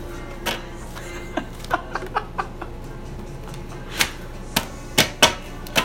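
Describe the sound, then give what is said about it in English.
A deck of 52 oversized cards being shuffled, producing irregular sharp slaps and clicks, a quick cluster early on and a few louder snaps toward the end, with no one speaking. “Imagine you had like really small hands and had to do this. Like fumbling with plates. 52 plates. Shuffle them.”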